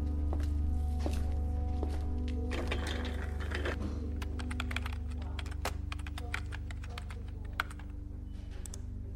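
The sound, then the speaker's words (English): Rapid, irregular clicking of keys on a computer keyboard as someone looks up a past storm, sharp taps coming in quick bursts and pauses over a steady low electrical hum, with no one speaking. “I went back to the computer and looked up the storm that hit the following day.”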